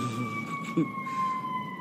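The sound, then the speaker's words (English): A fire truck siren in downtown Chicago holds a steady, slowly sinking wail, sounding continuously over a low rumble of traffic with one brief dull knock partway through. “Are you on top of the fire truck?”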